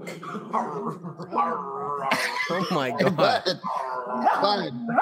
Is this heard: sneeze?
no